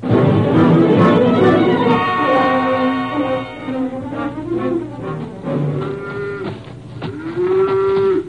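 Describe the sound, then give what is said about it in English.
A cow moos loudly on a farm, one long drawn-out low bellow followed by a few shorter, wavering moos, with no one speaking. “Let go of that cow for a minute”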